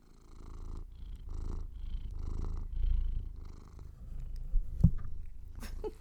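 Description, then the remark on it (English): A cat purrs steadily, its low rumble swelling and easing in a regular breathing rhythm, with a couple of small clicks or rustles near the end. “There's some cat ASMR.”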